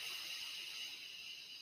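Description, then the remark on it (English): A long, steady breath drawn in through the nose during a guided breathing exercise, airy with a soft hissing quality, sustained evenly for over a second with no talking. “And then breathing in,”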